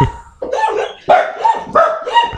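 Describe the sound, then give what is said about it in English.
A small dog lets out a series of muffled, throaty barks in quick succession, fairly loud, barking with a bone in its mouth. “Is he barking with the bone in his mouth?”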